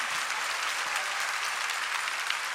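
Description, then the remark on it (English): An audience claps their hands in praise to the Lord, steady, dense applause, a continuous bright patter of many overlapping claps with no voices standing out. “If you're glad that he's in your life, clap your hands and give praise to the Lord.”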